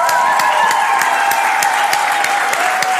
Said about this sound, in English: Can we give Jesus a hand clap?